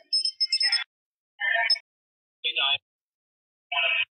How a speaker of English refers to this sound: It was kind of weird because as we started talking about the family members, the temperature gauge kept going off. So that's what you hear in the background, the little beeping.